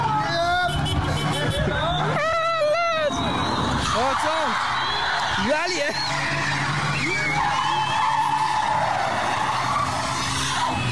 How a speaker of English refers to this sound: Okay, so a Garda car arrives on the scene, and the two white cars that are rallying around Cherry Orchard, one of them rams straight into the Garda car. The Garda car reverses, the other car clips off the side of the Garda car